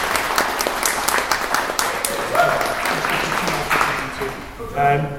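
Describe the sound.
A crowd applauds steadily, dense clapping filling the space at a fairly loud level, with some voices and faint calls mixed in as it continues and then gives way near the end.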